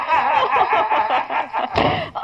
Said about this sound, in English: Yeah, I know. Don't slam the door when I go out.